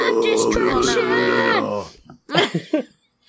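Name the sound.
imitated growl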